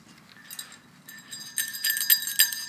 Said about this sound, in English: Do those jingle bells jingle? Yes, they do.